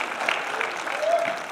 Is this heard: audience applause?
yes